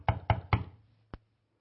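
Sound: knocking on a door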